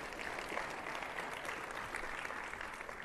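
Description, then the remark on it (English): Steady applause from an audience, many hands clapping in a dense, continuous patter that holds at an even level throughout without fading, with no talking over it. “Let's give them a big round of applause if you can.”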